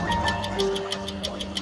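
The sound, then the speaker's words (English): A clock counting down ticks rapidly and evenly, about eleven crisp, bright clicks in under two seconds, over a low, steady background hum. No one speaks. “But that clock, it's counting down.”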